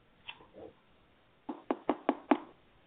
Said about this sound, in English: She stood up quick when the sound of tapping outside the stall door echoed